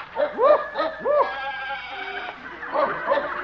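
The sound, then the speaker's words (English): Several goats and sheep bleat in overlapping, wavering calls, loud, with a jumble of animal cries filling the old horse doctor Doc Yak Yak's animal shed; no talking. “The old horse doctor is probably back here in his animal shed.”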